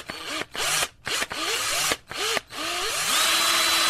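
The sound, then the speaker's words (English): An electric drill driving a screw in a garage to make a fishing rod holder: several short bursts of whining motor that rise in pitch as they spin up, separated by brief pauses, then a longer steady run at the end. Loud. “It's a drill. An electric drill.”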